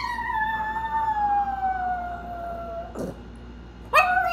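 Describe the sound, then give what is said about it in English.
A 9-pound chihuahua howls after its owner has left the house, in a long, wavering, slowly falling note, pauses with a brief sniff or breath, then starts another high howl. Fairly loud, with no talking. “Reggie is this 9-pound chihuahua, and she has a lot of feelings about everything. So, like, this is what she sounds like after I've left the house.”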